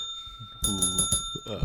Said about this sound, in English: That was a great ding.